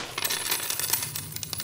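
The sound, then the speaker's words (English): A pile of coins, nearly a year's worth of money with some blood on it, spills and clatters down, a dense run of bright metallic clinks and jingles over a couple of seconds, fairly loud with no voices. “That's darn near a year's worth of scratch right in front of you.”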